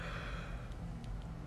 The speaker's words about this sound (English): Yawning on the fucking podcast.